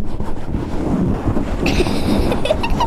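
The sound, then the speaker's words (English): Heavy rain pours down outside in a dense, steady rushing hiss with no break, a low rumble underneath and a slightly brighter, sharper spatter joining in over the second half. No one speaks. “It sounds like it's raining outside.”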